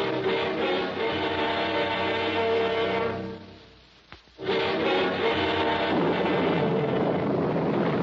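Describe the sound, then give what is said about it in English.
A thunderstorm roars in a loud, continuous wash of wind and rumbling thunder, fading briefly to near quiet before crashing back in at full strength. No voices are heard. “Below, and miss a storm like this?”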